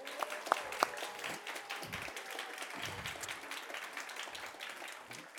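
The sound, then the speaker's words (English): An audience claps steadily for about five seconds for the speaker's mother, whose birthday was just celebrated, a dense, even patter of many hands at moderate loudness, with a few brief higher tones near the start. “So can we give her a hand clap?”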